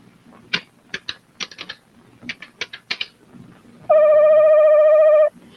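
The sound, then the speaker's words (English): A quick run of about a dozen sharp clicks from touchtone phone keys being pressed to order and pay for merchandise by phone, followed by a loud, steady electronic tone that holds for over a second before cutting off. No one speaks. “you're going to be able to order merchandise from the store through your phone and pay for it by phone”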